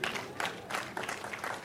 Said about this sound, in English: Let's clap for her.